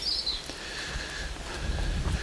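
Faint birdsong in Whitey Woods: a high whistled phrase at the start, then thin, steady whistling notes, over low thudding and rustling like footsteps in trainers on a path.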